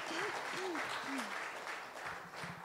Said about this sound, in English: Church, can we give them a round of applause? The five people that I talked to.